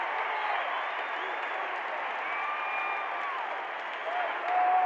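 arena crowd cheering

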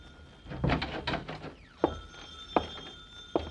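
telephone bell ringing

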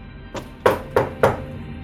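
knock on a door

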